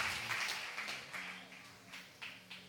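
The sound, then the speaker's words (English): An audience claps together as a clap offering to the Lord, a steady, dense wash of applause with a few sharper bursts standing out, fairly soft, with a faint voice murmuring underneath. “Oh, give a clap offering to the Lord.”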